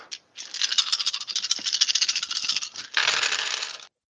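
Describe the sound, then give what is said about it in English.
Dice nicknamed Dave Dice are rolled for a perception check. They clatter and rattle continuously for about three and a half seconds, a dense run of bright clicks that briefly eases before a final louder burst, then stops. No one speaks. “On Dave Dice, don't fail me now.”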